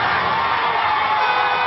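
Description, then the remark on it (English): A loud, dense roar of a crowd shouting and cheering at Westboro Baptist Church protesters and their signs, a continuous wall of overlapping voices with no pauses, sustained evenly for the whole moment. “The Westboro signs didn't stay long as a fiery crowd burst.”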